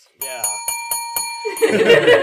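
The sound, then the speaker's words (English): A bright bell is rung six times in quick, even succession during a tabletop dice game after a roll of six successes, its metallic tone ringing on between strikes before voices start talking loudly over the fading ring. “Hey, I got six successes earlier and nobody rang a bell.”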